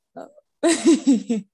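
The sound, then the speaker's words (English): A dog barks in a quick run of about four sharp, fairly high-pitched yaps, preceded by a brief softer whine-like sound. No one speaks. “Hold on, yeah. Just bark.”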